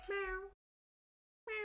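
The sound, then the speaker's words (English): A person's voice does a short, drawn-out imitation of a cat's meow, as Judy Dench, followed by about a second of silence before another voice sound begins. “Well, Judy Dench goes... Meow.”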